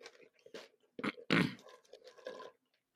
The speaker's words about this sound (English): Clearly, I was hoping you'd take like 5 seconds longer because I'm chewing candy.